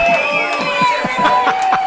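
A crowd cheers loudly and steadily for two seconds, a dense roar threaded with sustained high whistle-like tones and a quick patter of clapping bursts.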